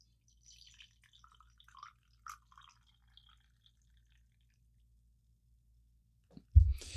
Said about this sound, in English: I got some tea today. I'm going to pour it.